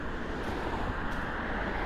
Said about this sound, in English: They're just cars. They're just noise.